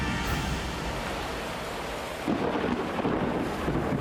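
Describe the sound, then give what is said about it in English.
Steady heavy rain hisses over a deep rumble of thunder on a storm-racked island coast, swelling louder partway through as the storm rolls in; no voices, just the continuous roar of the downpour. “We open on the storm-racked coast of an island in the middle of the Western Oceans.”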